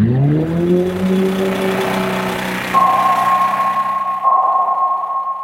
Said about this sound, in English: The one that we think about a lot with the species I study are the sounds generated from commercial shipping. It's only been about 100 years that these ships have been in the ocean.